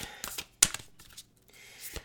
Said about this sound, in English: So as I'm shuffling the cards, think about what your goals are.